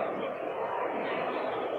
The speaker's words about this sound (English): you're in an event in Helsinki with thousands of people outside the door